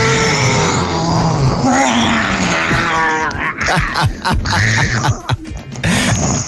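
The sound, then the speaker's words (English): Someone imitates a lion's roar with loud, rough, growling vocal bursts that rise and fall over several seconds, with gravelly low tones and strained higher harmonics. “Well, if you're wondering why people are shouting and roaring, they're doing lion impressions”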